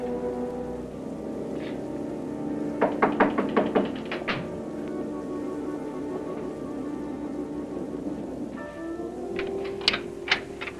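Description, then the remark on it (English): A quick run of six or seven sharp, crisp knocks on a door, performed by a Foley artist, followed after a pause by a few scattered knocks, all over a steady low background rumble. “I do appreciate that they had two Foley artists working, one to handle everything else, and one just for the precise door work that you find throughout the evening.”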